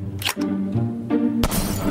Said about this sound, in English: She starts off slow, one ball, two balls. Glass balls, which when they're hit, they explode and feathers fly out.